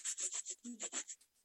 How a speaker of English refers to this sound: So the best way to clean your block, you don't want to use very much water at all. You just give it like a light spray with a spray bottle and give it a good scrub with like a paper towel.